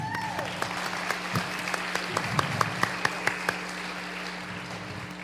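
A round of applause from a crowd, steady clapping with sharp individual claps standing out over a constant low hum, lasting several seconds.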